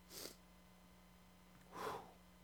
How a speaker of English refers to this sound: Bless you.